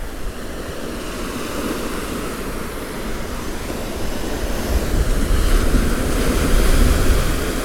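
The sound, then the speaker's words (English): Sea waves wash against the seawall at Dawlish, with storm clouds out to sea, in a continuous, roaring rush of surf that builds and swells louder toward the end, with no voices present. “I'm just about to walk along the seawall at Dawlish.”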